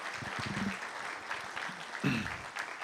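An audience applauds steadily for about three seconds, a dense wash of many hands clapping at once, with a few voices calling out faintly among the claps.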